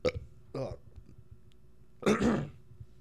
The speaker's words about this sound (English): sorry. I think burped while I was talking. It sounded like I got choked up and I was sad.